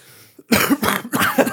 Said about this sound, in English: But the first night I did it, I only had it on for like an hour maybe. And I woke up and I had to cough really bad.